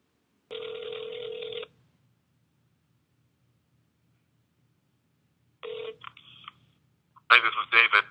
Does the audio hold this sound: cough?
no